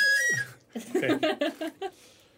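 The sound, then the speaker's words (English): A short, breathy pan flute tune: a held note that slides downward, followed by a quick run of five or so bright, separate notes, played fairly loud with no talking. “And I'm going to try and play my pan flute at him, but I know it's not going to work.”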